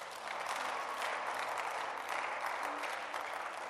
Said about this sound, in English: If I were you, I'll be clapping.